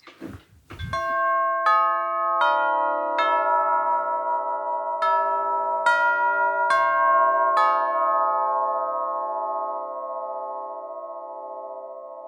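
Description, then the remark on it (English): A vintage long-bell tubular door chime, struck with a mallet, rings out the eight-note Westminster peal, each tone struck clearly and overlapping the last, then the bright metallic notes hang and slowly fade in a long, resonant decay. “So that is a long bell, eight-note melody, Westminster peal, played on a vintage long bell door chime.”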